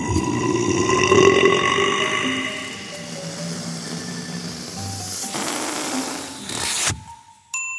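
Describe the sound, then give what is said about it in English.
A long, loud, rumbling burp, caused by being fed baking powder and buttermilk during an annual pancake eating contest, drags on for about seven seconds, rough and throaty, before cutting off abruptly into near silence. “Thankfully, Janet used her stretchy limbs and super clever brain to make him burp himself out of the picture by feeding him baking powder and buttermilk during the annual pancake eating contest.”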